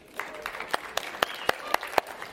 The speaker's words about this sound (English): Wonderful worship. Let's give God a clap, eh? Yeah. And I think we should give the worship team a clap too, eh?